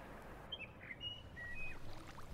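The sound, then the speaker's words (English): A lone bird sings a handful of thin, high whistled notes in a loose sequence, faint, over a steady low rushing background with no voices; it is the earliest song of the dawn chorus, in still, cold air. “It is the very earliest outpost of the dawn chorus.”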